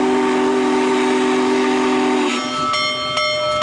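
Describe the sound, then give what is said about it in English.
A Union Pacific Big Boy steam locomotive's deep, sustained whistle blares for about two seconds in Fort Worth, then gives way to rumbling train noise with short sharp whistle bursts, loud, with no talking. “Fans of vintage railroading got something of a treat this weekend when the Union Pacific Railroad brought one of the few remaining big boy steam locomotives to Fort Worth.”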